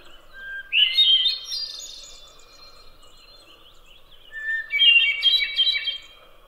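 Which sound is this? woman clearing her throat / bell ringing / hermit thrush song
hermit thrush song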